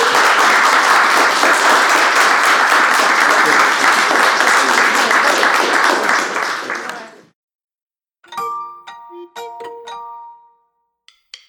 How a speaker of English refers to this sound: Round of applause? Yeah. For us.